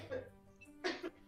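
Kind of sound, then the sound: human body sound, sneeze or cough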